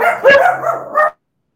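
Small dogs barking in a quick cluster of high, yappy barks, fairly close and loud, ending abruptly after about a second.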